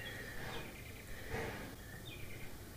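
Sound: bird singing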